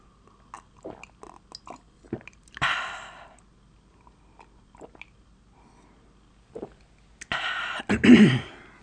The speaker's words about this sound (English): Okay, I'm going to take a drink of water here to make this very ASMR.